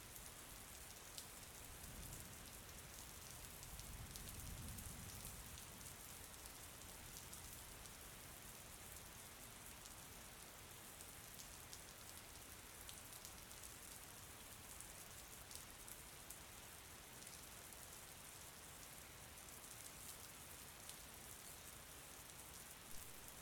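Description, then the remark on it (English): Steady, heavy rain from a storm rolling overhead pours down in a dense, hissing patter that holds at an even level throughout, with a soft low rumble swelling briefly early on. No one speaks. “Tonight, at midnight, you will find yourself sitting by a warm and toasty log fire as a storm rolls overhead.”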